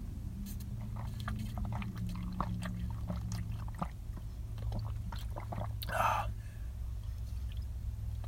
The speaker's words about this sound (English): I'm going to chug this water because I desperately need it. Cheers, everybody.